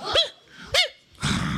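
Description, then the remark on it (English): Children's voices give two short, loud woofs about half a second apart, imitating a dog's bark, followed by a burst of breathy noise. “Everyone say, "Hello." Say, "Hello." Say, "Woof."”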